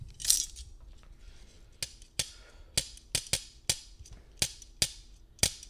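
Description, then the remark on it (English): A series of about ten sharp, bright metallic clinks from metal kitchen tongs taken from a kitchen drawer, like a thin stick tapping metal, coming in an uneven rhythm after an initial louder clack, with no voices. “Two chopsticks. Close. Chopstick and think metal.”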